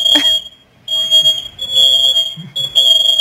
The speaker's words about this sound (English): Fire alarms were going off. The house is full of smoke.